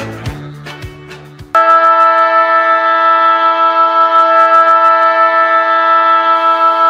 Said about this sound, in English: Well, you've just heard the final siren, and West Coast paid a heavy price in that flat period in the second quarter as they fell 5 points short.